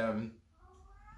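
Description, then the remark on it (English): A cat gives a loud meow at the start, followed by a softer, drawn-out mewing tone that trails off quietly over the next second, as the cat is getting back in. “So I think for me, it's the cat's getting back in.”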